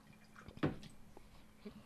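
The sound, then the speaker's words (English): A drink is poured quietly: one brief splashing gush of liquid, then a few soft drips and small clinks fading over the next second, with no voices. “Like, we're over here pouring drinks.”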